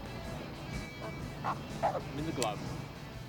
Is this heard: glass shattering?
no